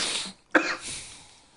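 A single sharp cough bursts out after a breathy, hissing exhale, followed by a fading rasp of air. No one speaks.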